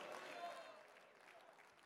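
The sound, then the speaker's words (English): An audience claps together in a dense, steady burst of applause, fairly faint, with a murmur of crowd voices mixed in, as a preacher calls on them to clap their hands and shout hallelujah. “Clap your hands and shout hallelujah.”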